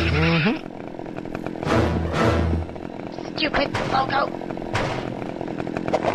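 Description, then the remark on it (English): A chainsaw roars loudly, revving in uneven bursts as it saws the Nintendo logo in half, with sharp crackling impacts and a brief spoken voice over the din. “Sawing the Nintendo logo in half.”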